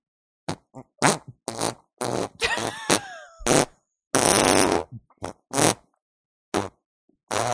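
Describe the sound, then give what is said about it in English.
A voice imitates farting naked in the shower with a series of wet, sputtering raspberry bursts of varying length, some long and buzzy, some short and popping, separated by brief pauses. “But could we hear Dave Coulier farting?”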